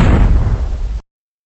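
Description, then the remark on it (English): A loud explosion bursts with heavy low rumble and broad crackling noise, sustaining for about a second before cutting off abruptly into silence. “He survived explosions.”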